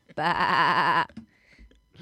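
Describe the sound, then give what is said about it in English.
A single loud, wavering sheep bleat, voiced by a person imitating the sheep in a comedic retelling of a Hannibal Lecter scene, lasts about a second before fading into quiet room noise and the start of someone speaking. “And Hannibal Lecter turns to the sheep and says, winks.”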